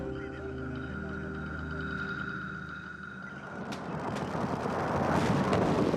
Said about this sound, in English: Rapid series of 40 explosions lit up Baghdad in the early morning hours.